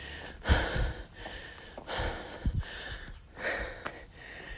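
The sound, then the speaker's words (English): Heavy, labored breathing of a person climbing a big hill in the mountains as it starts to get hot, a steady rhythm of deep rasping inhales and exhales repeating about four times, with no talking. “Sorry for my heavy breathing.”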